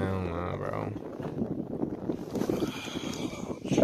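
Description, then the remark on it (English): Strong wind roars and buffets steadily across the microphone at a height of 1,200 feet in Nebraska, in a dense, rumbling rush, with a brief voice at the start before the gusts take over. “So windy, bro.”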